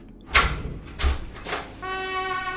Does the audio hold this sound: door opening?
yes